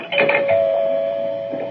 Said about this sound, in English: Oh, there's the doorbell, Laura. I better go answer it.